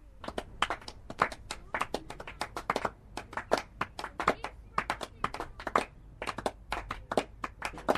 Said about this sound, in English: There is applause for every scoring shot, and sometimes there is applause when a run hasn't been scored.